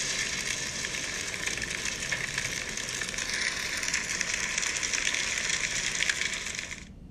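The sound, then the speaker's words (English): Forest fire crackling: a dense, steady roar of hissing crackle full of tiny pops, holding an even loudness for about seven seconds before cutting off abruptly. No voices. “Taking a shower? Oh, no. Forest fire.”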